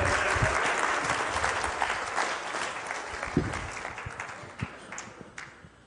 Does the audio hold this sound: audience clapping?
yes